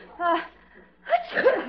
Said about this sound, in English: What was that? Oh, I just sneezed. I've got a